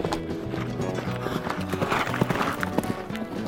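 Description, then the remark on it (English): A horse's hooves clip-clop steadily over the full few seconds, with a brief whinny rising above the clatter partway through. “Whoa, whoa. Settle down there, son. Hold your horses. Hold your horses.”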